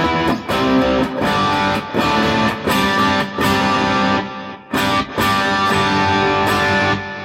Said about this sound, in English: Now, if I was using a sort of a delay under most circumstances, that sort of setting would be kind of like an always-on go-to delay setting. Yeah. So if I wanted a more modern sound with a bit more kind of air in it, maybe, than just reverb.